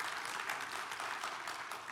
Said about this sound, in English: Yeah, you can clap for God. I love when y'all clap.